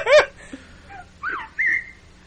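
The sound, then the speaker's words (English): Several shrill whistles with no talking, purportedly from Bigfoot, recorded on an expedition in the 1970s in the Sierra Nevada Mountains, California: a loud swooping one first, then two shorter ones, each rising and falling in pitch, over a faint low background hum. “Alright, these are whistles and growls from an expedition in the 70s, again in the Sierra Nevada Mountains in California.”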